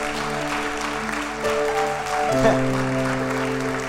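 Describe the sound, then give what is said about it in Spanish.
An audience at a worship service claps steadily for several seconds as applause for Jesus of Nazareth, a dense, even patter of many hands, while sustained keyboard or organ chords ring underneath and shift pitch a couple of times. “Vamos, dale un aplauso fuerte al que vive, a Jesús de Nazaret.”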